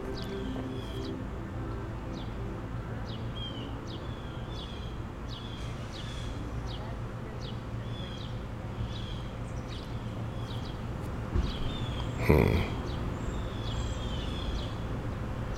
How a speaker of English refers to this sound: And here are some birds. Once again, I don't have a vocabulary for birds, and so I just see some birdies flying around.